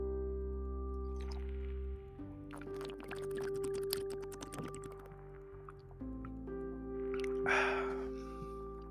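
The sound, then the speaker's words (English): A series of soft clinks and small clicks, then a brief breathy slurp of someone sipping hot tea, all over a steady low electrical hum with no talking. “My brain goes, excuse me, let's sip some tea now.”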